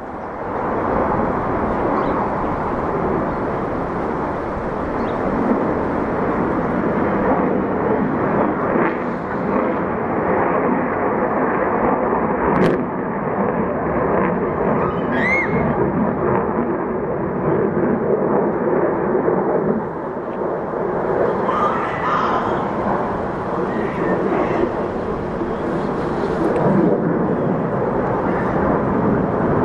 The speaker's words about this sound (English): Here comes a fighter jet.